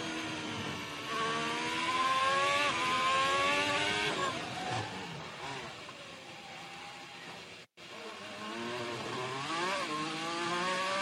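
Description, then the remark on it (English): The engine of Vettel's Ferrari SF1000 Formula 1 car screams loud, its high whine climbing and dropping through rapid gear changes, with one brief cutout before the revving picks back up. “Just the final one for me, just another one that I saw that we didn't get to see on the broadcast, just to further showcase just how much of a handful the SF1000 is.”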